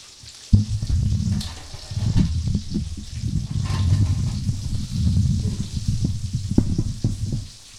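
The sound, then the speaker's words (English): Water roils and bubbles in a pot, starting abruptly and then churning steadily with a dense, low rumble and a crackling, sizzly hiss, fairly loud throughout, with no voices. “Taking our places during boiling water.”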